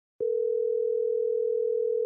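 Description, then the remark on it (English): A steady, unbroken telephone ringing tone hums at one mid pitch for about two seconds, clear, with no voices, as a phone call is being placed. “Sean, let's see if we can get Christy on the phone here.”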